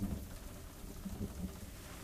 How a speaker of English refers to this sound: As you look around, you going to hear the roll of thunder overhead.